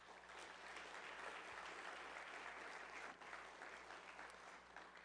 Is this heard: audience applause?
yes